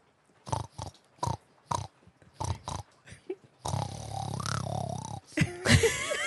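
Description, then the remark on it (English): A person imitates a pig, as a dare in a game of truth or dare, with a series of short, rhythmic snorts, then breaks into a longer, rougher grunting snort, with laughter and voices near the end. “Snort like a pig for 10 seconds or take a drink.”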